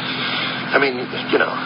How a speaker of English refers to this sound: I'm in a squad car, Matilda. Kowalski's driving me to where they picked her up.